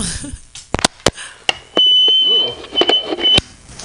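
A phone signals an incoming call with a steady, high-pitched electronic beep that holds for about two seconds, surrounded by sharp clicks and knocks, fairly loud.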